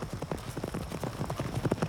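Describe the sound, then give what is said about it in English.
Rapid horse hooves pound in a steady galloping rhythm, several beats overlapping as if more than one horse is running, moderately loud with no voices; riders push their horses on after riding all day and night without stopping. “Their horses can't carry them fast enough. They've been riding all day and all night without stop.”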